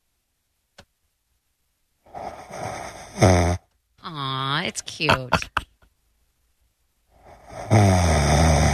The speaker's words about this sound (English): I came over to check that was you. It was you, and it was cute and small and tiny little snore.